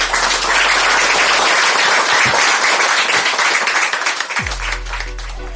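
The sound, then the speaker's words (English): A crowd applauds in a dense, steady patter of many hands clapping, holding for several seconds and thinning a little toward the end, with no voices over it. “But I'd like everyone to just give a round of applause”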